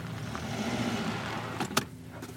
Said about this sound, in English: I know I live out in the middle of nowhere, but damn, this does not look like someplace you'd want to be. You're taking a hearse off-roading.